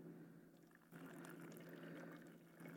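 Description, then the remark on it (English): Water pours steadily from a bottle with its labels removed into a container, a continuous gurgling splash that briefly eases and then resumes, with no voices. “And we go to draw from this well. I took the labels off because I can't sponsor anybody.”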